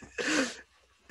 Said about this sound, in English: This is the 8th time this episode he has sneezed into the microphone.